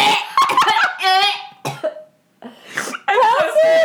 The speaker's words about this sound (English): I just coughed up some yellow shit.